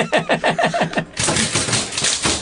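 Typewriters played as percussion, with a steady run of sharp, evenly spaced key strikes that swells into a dense, loud clattering wash of many keys hammering at once.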